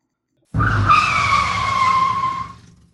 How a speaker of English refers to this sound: Marco hit the brakes, and the truck came slithering and fishtailing to a stop at the gate of the meatpacking plant.